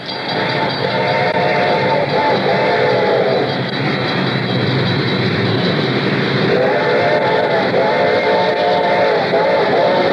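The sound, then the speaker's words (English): An approaching train rumbles loudly while its whistle sounds in two long, wailing blasts. Its bell rings steadily and high underneath. No one speaks. “The train was coming closer. I could hear its bell ringing and the cry of its whistle.”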